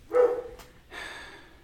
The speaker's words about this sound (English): Bowser says, do it now. Yep, Bowser says, now. Yep. He'll start barking in a minute.